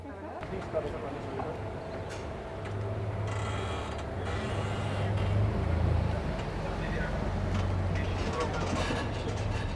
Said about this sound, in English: They stopped at the panaderia. Actually, their police car sounds a bit rickety.